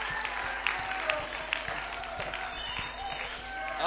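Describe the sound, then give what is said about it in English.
A large group claps steadily in a dense, continuous wash of applause, holding an even level for several seconds without speech over it, applauding a man as the offering is about to be taken up. “So come on, let's give him a clap.”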